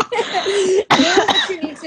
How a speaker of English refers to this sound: By the way, don't look at me weird if I grab this and start coughing because...